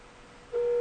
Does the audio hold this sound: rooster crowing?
no